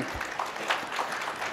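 An audience claps together in a brief, steady burst of applause, dense and even throughout, with no voices standing out above it.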